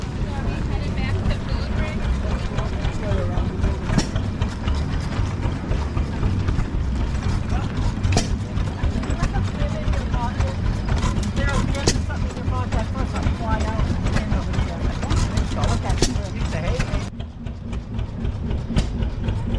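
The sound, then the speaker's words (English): Old machines run steadily, a loud continuous mechanical rumble with rhythmic clanking and clicking throughout, faint voices mixed into the background. “It looks like there is a bunch of old machines over here.”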